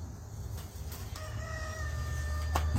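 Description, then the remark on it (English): A rooster crows once, a drawn-out call over a steady outdoor rumble, with a few brief knocks around it and no voices. “The one that crows all the fucking time, he's gotta go.”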